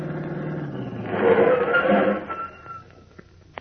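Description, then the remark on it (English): A car engine hums as it approaches, swelling to a broad rumble, then eases down and idles out as the vehicle pulls up and stops right in front of a house, followed by a few small clicks. “Pulled up right in front of the house.”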